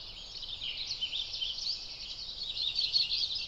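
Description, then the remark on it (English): A soft, slow warbling song from an Audubon's warbler, faint, with a few brighter notes rising over a steady high-pitched background wash. No one speaks. “This is Audubon's warbler, or as I mentioned in the previous episode, a butterbutt.”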